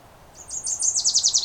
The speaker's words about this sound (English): There, this warbler's coming right up to me. So this one's right above me, a few feet away.